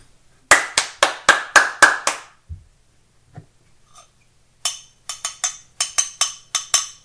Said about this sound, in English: For the audio listeners, we are both clapping aggressively.